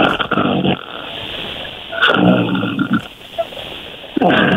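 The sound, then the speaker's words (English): A person imitates snoring: three loud, rough, rasping snorts, the middle one the longest, separated by quieter breathy pauses. “Give us an actual snore. Put some oomph into it.”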